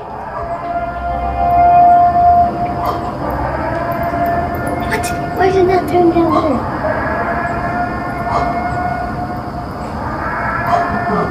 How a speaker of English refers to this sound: A lot of places they're using from the movie The Purge. They're using that as the siren.